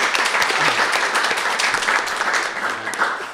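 A crowd breaks into steady applause, many hands clapping at once in a dense, continuous patter that holds loud and then tapers slightly toward the end.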